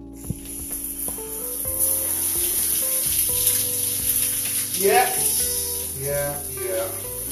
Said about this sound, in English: But before that, I'm going to have a cold shower. So here it goes. And you know, now I'm straight into the cold.